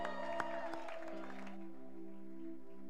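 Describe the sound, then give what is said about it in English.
A church audience claps and applauds, fairly faint, over sustained organ-like tones, welcoming a preacher; it fades out after about a second and a half, leaving the held tones. “If you're clapping, put your hands together even more for the Lord.”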